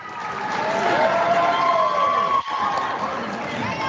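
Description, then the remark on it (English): An applause sound effect played for the winner of a guessing game: a crowd applauding, with dense, steady clapping filling about four seconds, rising and falling whistles or cheers on top, and a brief dip partway through. “First, I want to give you your applause.”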